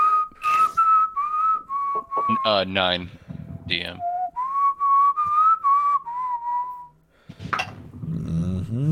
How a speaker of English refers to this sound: In fact, …'s basically, like, whistling it.